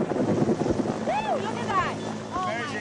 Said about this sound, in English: Take one 1,400-pound black rhino. A young female. Two veterinarians. Three game capture specialists. A 52-year-old helicopter. And you get this.